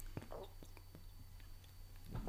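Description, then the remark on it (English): Someone sips a drink, with soft wet mouth clicks and small slurps spread across a couple of seconds and a fuller gulp near the end. “Let's take a little fucking sip-a-roo.”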